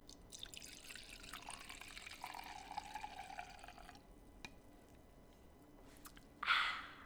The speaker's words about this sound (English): We've poured ourselves our glass of wine now, and we're ready to talk about something.